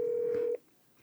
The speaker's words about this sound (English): These things make phone calls? I literally don't remember the last time I dialed out.